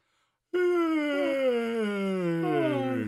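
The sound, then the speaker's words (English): A long, loud voiced yawn that starts abruptly after a moment of silence and drags on for nearly three seconds, its groaning tone sliding slowly downward in pitch. “But I'm going to yawn.”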